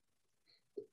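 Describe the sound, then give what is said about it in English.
A single quick sneeze, a faint breathy intake followed by a short, sharper burst near the end, fairly quiet and with no talking around it. “Oh, sorry. Bless you.”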